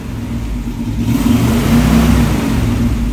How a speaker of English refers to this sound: There we go, revving up the Buick.